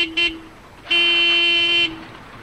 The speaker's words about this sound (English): This is a noisy place. Cars and trucks honk their horns under the viaduct, and men are yelling about money at a bar next door.